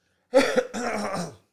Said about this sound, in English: Cut the bad cough just then, a couple seconds ago.